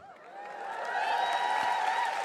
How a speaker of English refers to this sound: And you are cheering yourself there, because I barely ever download it, because I don't want people to think I'm vain.